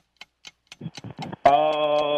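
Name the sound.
game timer clock ticking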